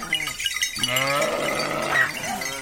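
A shepherd's flock of sheep bleats loudly in wavering, nasal cries that overlap one another as it is driven down marbled hillsides near the village of Carrera on Italy's Tuscan coast, with a faint tinkle of small bells behind and no one speaking.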